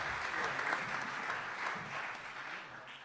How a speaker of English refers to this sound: Good morning. Can we give another round of applause for these amazing guys? Wow. Wow.